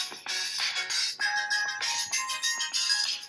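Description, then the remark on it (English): An upbeat 1990s synth pop song plays through a small phone speaker, thin and tinny with almost no bass, steady and fairly loud for a few seconds with no one talking. “I'm playing it on my phone because we're a high-tech operation.”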